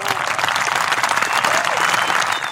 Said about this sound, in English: Oh, that's beautiful. We'd just like to stand up and give you a little round of applause.